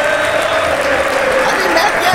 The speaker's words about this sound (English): And now stop. And now keep clapping. And now everyone do the Olay chant. Olay!